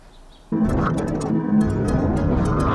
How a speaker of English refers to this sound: At least the birds are happy.